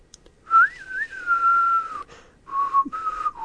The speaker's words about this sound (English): I can't even whistle.